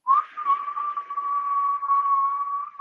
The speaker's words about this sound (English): You know what's a sign of your frequency? Whistling.